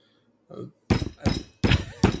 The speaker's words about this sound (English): Is that a knock at the cabin?